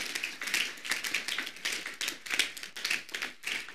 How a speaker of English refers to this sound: If you don't clap, I'm not sure you're in the house of God.